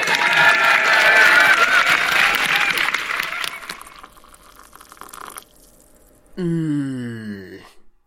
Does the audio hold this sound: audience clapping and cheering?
yes